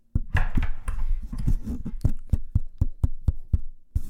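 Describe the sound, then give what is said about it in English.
A steady run of about fourteen sharp hand claps, evenly spaced roughly three or four per second, crisp and fairly loud, with no voices; the clapping activates a clap-activated iPhone 13. “Oh my God, it's clap activated.”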